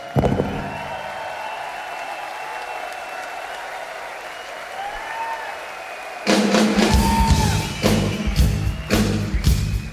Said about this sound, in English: Time to give you a round of applause.